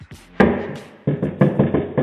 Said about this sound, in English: Great knock. Yeah. It really was. Sound like the police.